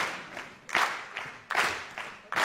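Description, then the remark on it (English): An audience claps together in a steady rhythm during a dance demonstration, about five or six sharp, bright claps spaced roughly evenly over a couple of seconds, with some claps landing louder than others. “Oh, they're going to clap.”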